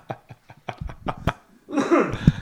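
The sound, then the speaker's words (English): A short coughing fit: about half a dozen quick, clipped bursts in an uneven rhythm, followed by a longer, rougher, throaty cough. “Excuse me there. I had a little cough.”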